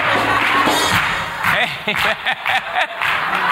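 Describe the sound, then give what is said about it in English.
A crowd at a church service claps together in a dense, steady wash of sound that breaks into sharper, separate claps toward the end, with voices murmuring underneath. “Music ministry, I think they're clapping because they want to rejoice.”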